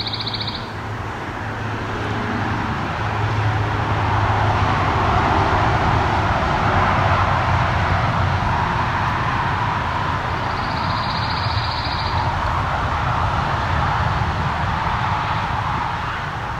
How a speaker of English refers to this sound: So what we're hearing here is a pine warbler in a red pine.